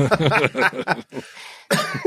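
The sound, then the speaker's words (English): A person who is still a little sick, with lingering phlegm, coughs: a burst of several harsh coughs in quick succession, followed by a breathy exhale and then another short cough at the end. “You're still coughing.”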